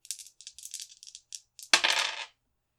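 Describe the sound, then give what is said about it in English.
Dice rattle with a quick series of light clicks, then clatter loudly onto a hard table surface and settle within a moment, with no voices; a roll to act under pressure, coming up 6 and 1 for a total of 7. “I'm going to need you to roll to act under pressure.”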